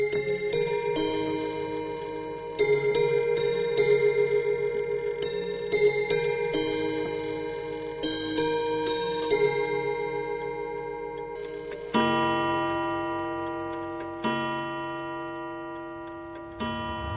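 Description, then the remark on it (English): An old mechanical clock at the Irish-Swiss Institute of Horology ticks steadily, while sustained ringing Westminster chime tones swell and repeat over it. There is no talking. “And the clock they have in there, that old one, is really fascinating.”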